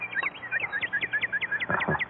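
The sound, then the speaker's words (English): A northern cardinal sings a quick, steady series of clear slurred whistles, about a dozen notes repeating evenly, bright over a soft background hiss, among pine trees at an isolated house about 30 miles from the city. “There you are, a cardinal.”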